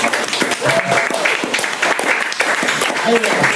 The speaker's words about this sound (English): Round of applause for everybody who's come up and told the story so far.